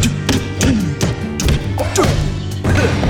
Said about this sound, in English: This looks like a scene for Eugene. Time to punch this wrapped rapscallion.